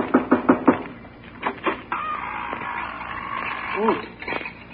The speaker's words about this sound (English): Well, if we're going in to get the Wicked Witch, I better knock on the door.